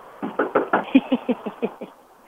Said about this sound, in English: Hey, I was knocking over here, but I'll go to your door trick-or-treat. I don't know. I'm trick-or-treating this morning. It's for Halloween.